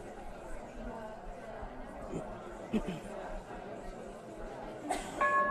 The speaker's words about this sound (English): Woo! Woo! That was bold. That was a bold bell.